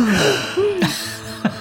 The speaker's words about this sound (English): Should it be a cinematic gasp?